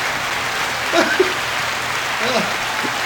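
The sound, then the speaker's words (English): Dense, steady applause from a crowd of fans runs the whole length, loud and unbroken, with a couple of brief cheering whoops rising above the clapping. “That's not the volume, it's our fans.”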